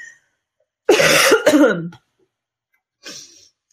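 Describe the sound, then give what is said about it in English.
A loud, raspy cough bursts out for about a second, followed after a pause by a shorter, softer throat-clearing cough. No one speaks. “That you're willing to deal with my cough, right?”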